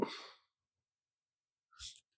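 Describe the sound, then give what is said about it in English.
A person imitates a pug's snorty sneeze: a breathy burst fading over half a second, a pause, then a short sharp snort. Fairly quiet. “I absolutely love pugs. That sneeze is adorable, as gross as it is.”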